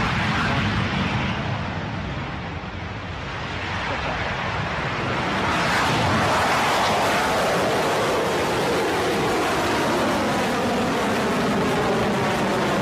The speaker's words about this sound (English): Propulsion is nominal. Guidance is nominal. And with that, another one leaves the crust. Electron has successfully cleared the pad at Launch Complex 1 and is on its way to orbit.